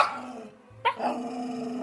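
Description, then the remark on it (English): A sound recordist's pet Jack Russell Terrier, recorded for movie sound effects, gives a single sharp bark partway through, framed by low, rumbling growl-like sounds that run before and after it; no one speaks. “As well as a baby elephant, the movie had sounds of donkeys, geese, tortoises, dolphins, and the sound recordist's own pet, Jack Russell Terrier.”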